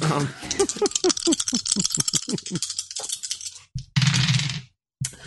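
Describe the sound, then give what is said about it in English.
Dice clatter and click together as they are scooped up, then a short, loud burst of rattling as they're shaken, ending abruptly with a brief pause. “I need some more dice.”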